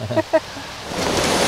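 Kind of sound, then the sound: nature, rain falling outdoors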